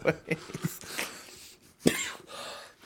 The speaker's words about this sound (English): Don't cough in the mic.